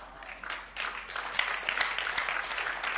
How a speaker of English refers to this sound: By the grace of God. Please clap for Kasawa West again.